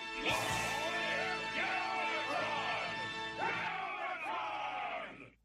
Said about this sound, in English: We cut away from the Decepticons cheering their new/old leader back to Unicron.